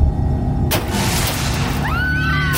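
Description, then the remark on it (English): A sudden loud crunch of car metal as something lands on the car's hood bursts in over a low rumble. Grinding noise and shrill, rising screeches follow near the end. “Just then I heard the sound of crunching metal and … screaming.”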